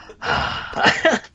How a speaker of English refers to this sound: it's like Kane Hodder's like heavy breathing Jason, just auto-tuned